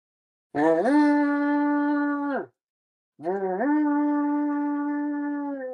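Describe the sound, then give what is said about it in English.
A person imitates a wolf howl twice, each a long, loud, steady vocal tone that swoops up at the start and holds before trailing off, with a short pause between. “A wolf, like... But it doesn't sound like a real wolf. It sounds like somebody's making a wolf sound.”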